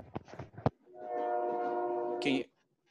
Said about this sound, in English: Oh, okay. That was probably Jojo's train. Oh, okay. I heard the train.